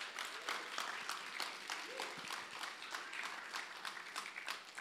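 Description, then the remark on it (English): A large audience applauds steadily to give God a clap, a dense wash of many hands clapping at once, sustained and fairly loud throughout with a faint voice briefly rising beneath it. “Let's give God a big clap.”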